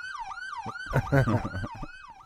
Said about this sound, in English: Oh, what's this? That's got a security alarm in the background. Security alarm again. Why is it that?